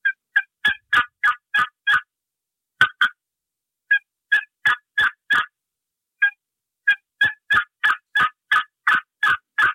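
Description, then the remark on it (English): A turkey call run at a slow, proper turkey rhythm works through runs of sharp, raspy yelps, several bursts broken by short pauses, fairly loud with no talking. “Slow that call down to a proper turkey rhythm like this. This is the same call I just ran.”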